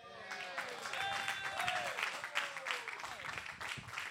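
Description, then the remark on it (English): An audience claps steadily in a dense, continuous wash of applause that stays fairly loud throughout, with some sustained tonal whoops or cheering voices rising and falling over the clapping. “Keep clapping.”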